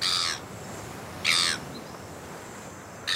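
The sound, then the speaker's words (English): Seagulls cry out in three harsh, raspy calls spaced a second or so apart, loud, as they fly overhead on an island, over a steady low wash of waves. “While I wait, I'm going to use my ears to listen to the waves and to the seagulls crying out as they fly overhead.”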